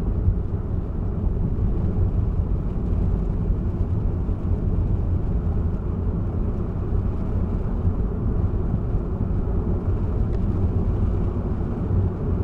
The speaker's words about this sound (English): The driver is on a long and familiar trip, down a secluded road, in a car whose lights are barely able to stay awake.